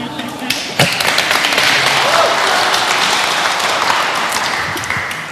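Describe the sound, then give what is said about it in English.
Steady, dense applause from a crowd, a continuous loud patter of many hands clapping that holds for several seconds before easing slightly at the end, with a few murmuring voices underneath. “Yeah, that applause goes all to him.”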